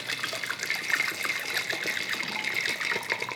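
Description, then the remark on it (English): A steady stream of liquid pours and splashes continuously, bright and trickling, as a cocktail is strained out of its old ice and poured over fresh ice, with no talking. “I'm straining out the old ice.”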